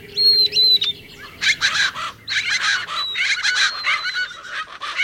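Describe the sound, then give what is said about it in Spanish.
A busy chorus of birds in winter in the lower Rio Grande Valley, Texas, calls without pause, with thin high whistled notes at first, then loud harsh chattering and squawking bursts overlapping one another, over a low steady background murmur. “Sonidos invernales del Valle del Río Grande bajo”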